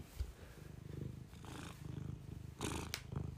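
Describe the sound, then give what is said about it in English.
A cat purrs steadily into a microphone, its nose touching the microphone a few times, a low rhythmic rumble pulsing continuously throughout with a few brief breathy rustles, no talking. “All right, that's enough of the cat purring.”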